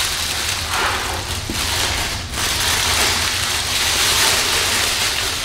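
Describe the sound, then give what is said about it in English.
Paper wrapping around a Master Replicas prop set rustles and crinkles steadily for several seconds during unboxing, a dense, hissy crackle with brief dips as it is handled, and no voices. “I don't want to rip the paper.”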